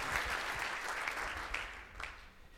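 Steady audience applause at a magic show as a volunteer comes up on stage, a dense wash of many hands clapping at a fairly even level, with a few sharper claps standing out before it gradually thins toward the end.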